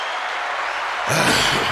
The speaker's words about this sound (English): Should clap it up. Yeah, I think it's very important. Round of applause. Clap it up, man.